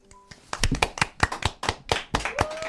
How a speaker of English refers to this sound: All polite clapping here in the studio.